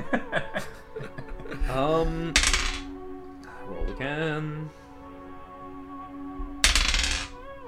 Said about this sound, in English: Roll again. Roll this. Oh, don't give me this dice.